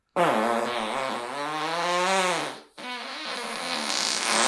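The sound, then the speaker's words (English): A recorded fart is played back: long, loud and buzzy with a wavering pitch, briefly cutting out near the end before a second rasping burst trails on, heard alone. “So, there were four that I wanted to play. Speaking of farts.”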